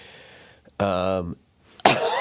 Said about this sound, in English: excuse me. I apologize, guys. I'm fucking coughing all over the place.